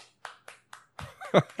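One person claps four times in a quick, even rhythm, each clap a sharp slap, then a burst of voiced laughter or snickering takes over.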